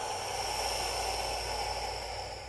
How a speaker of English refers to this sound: Exhaling all the breath out, empty, empty, empty.